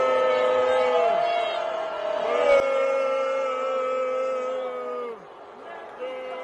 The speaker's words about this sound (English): I'm going to play it again, and then you would definitely hear the rest of the crowd booing. Now, I didn't hear any cheers, none whatsoever.